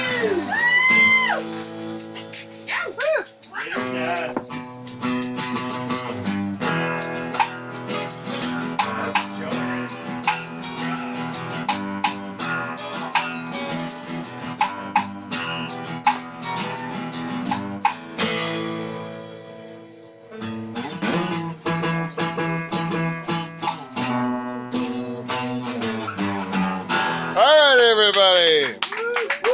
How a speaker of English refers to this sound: Every once in a while, I like to pretend I have a hot crowd here at Live from the Dutch Hall, and this is a real live, honest to God, hot crowd in Pine Grove tonight. I can't believe it.